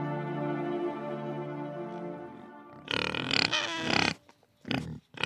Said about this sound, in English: I was just out checking out my pigs. So we've got three mother pigs and hoping one of them will give birth fairly soon, but she's looking like she's holding off.